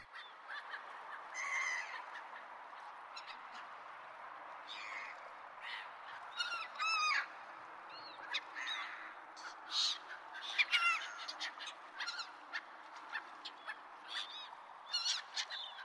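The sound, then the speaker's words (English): A flock of birds honks and calls in overlapping bursts, goose-like cries rising repeatedly over a steady background murmur, fairly loud throughout with no talking. “Yeah, birds.”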